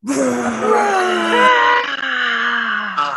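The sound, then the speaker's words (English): Several voices together let out a long, loud, drawn-out roar in imitation of a lion, a group 'Lion's Roar' done together on a count of three, a wavering, moaning cry sustained for about three seconds with no talking. “So big Lion's Roar together. 1, 2, 3, Lion's Roar.”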